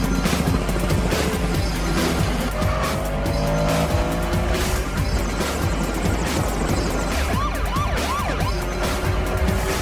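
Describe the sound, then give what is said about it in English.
Roaring car engines race at speed with squealing tires and skids as cars flee pursuing police through the streets of Miami, a siren wailing intermittently and a helicopter droning overhead, loud and continuous throughout without any talking. “In this minute, Brian and Roman's cars continue to race away from pursuing police.”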